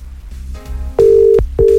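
The ringback tone of an outgoing phone call sounds loudly: a steady electronic tone held for about half a second, a short gap, then the tone starts again, over faint background hum.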